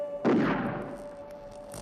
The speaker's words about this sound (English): And, yes, the sergeant didn't hear that gunshot.